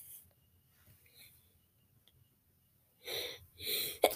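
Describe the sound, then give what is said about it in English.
After a few seconds of near silence, a single sneeze erupts: a sharp breathy intake followed by a loud, noisy burst ending in an abrupt snap. “Bless you.”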